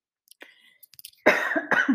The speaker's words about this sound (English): Excuse me, big cough.